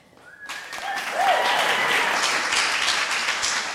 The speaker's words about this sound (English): Well, thank y'all so much for joining us tonight, and I just want to get another round of applause for the room, for the tape, for these three women.